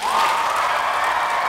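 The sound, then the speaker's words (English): A crowd applauds a poet after a spoken-word poem, a loud, dense wash of many hands clapping that holds at an even level throughout with no voices standing out. “Applaud the poet.”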